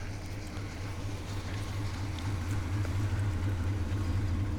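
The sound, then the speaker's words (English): A car's low, steady engine rumble fills the moment, growing slightly louder toward the end as it passes by, with no voices over it. “That's a suspicious looking car.”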